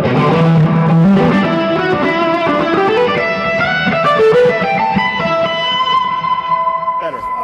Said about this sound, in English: And then the Leslie does rotate, so you do get a little wobble. Yeah. But it's not enough wobble to move the needle. So I'm basically using it for chorusing.